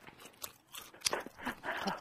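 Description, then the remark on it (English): Someone chews food with a full mouth, making soft, irregular crunching and smacking bursts in an uneven rhythm. The sounds are fairly faint and there is no talking. “You can talk with your mouth full.”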